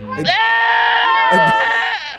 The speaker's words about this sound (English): We got to get more goat-sounding goats. This just sounds like people screaming.